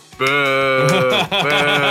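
A loud, drawn-out vocal boo from one person, wavering like a bleat, breaking briefly before a second sustained boo follows.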